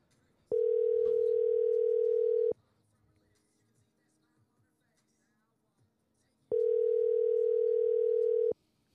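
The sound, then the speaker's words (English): A phone's outgoing ringback tone while calling a friend to add him to a call: two steady, clear two-second rings separated by about four seconds of near silence, with faint background noise in between and no talking. “I haven't tried calling Austin yet, so I'm going to try to add him in this call.”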